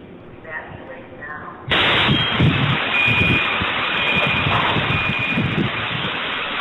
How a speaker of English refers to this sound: That's a hell of an explosion. Oh, yeah. Oh, yeah. So, nonetheless, the bomb went off at 6:29 a.m., severely damaging the AT&T building and affecting about 40 other businesses down there.